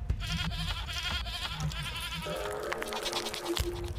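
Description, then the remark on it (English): A goat bleats repeatedly in wavering, nasal cries, loud, with a second higher-pitched bleat joining partway through over a busy background. “I want the goat to come back.”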